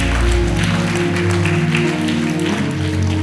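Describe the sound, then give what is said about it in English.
An audience claps along in a loose, scattered patter, the crisp hand claps layered over loud, sustained keyboard chords and a deep bass tone that fill the whole stretch. “If you can hear that, just kind of clap your hands at a sign of anticipation.”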